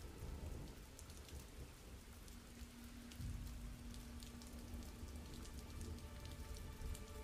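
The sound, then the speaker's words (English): Steady rain pours down continuously, a dense hiss with scattered droplet patter and a low rumbling undertone, like a storm soaking the area. No voices are heard. “So, Reek, as you look across the river, it's not as if it's so stormy and rainy that you can't see across.”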